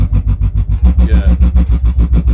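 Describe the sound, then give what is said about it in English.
A deep, EQ'd sine-wave sub bass pulses rhythmically as an LFO modulates it, throbbing about eight times per second with loud low-end swells, joined midway by a faint, wavering higher tone. “But then I can automate just that sub with an LFO.”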